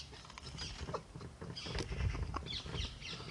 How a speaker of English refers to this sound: Oh! The parakeets are back. Those are the ringneck parakeets.